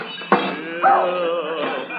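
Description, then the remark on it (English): A dog named Tiny, a hound, gives a sharp bark by a Christmas tree, then lets out a drawn-out, wavering whine that rises and falls, fairly loud, with no voices. “Of all the clumsy, fumble-footed hounds.”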